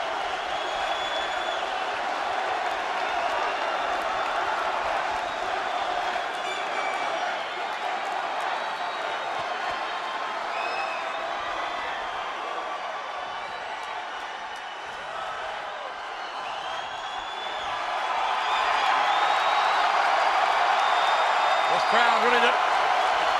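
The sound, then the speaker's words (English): A large crowd of WWF fans cheers continuously for over twenty seconds for a returning WWF superstar, a dense steady roar with scattered whistles and shouts, swelling louder toward the end. “Cheering long enough to let the man talk.”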